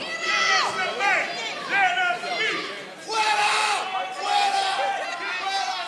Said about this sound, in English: He looks out at the crowd as people begin pointing at him and screaming.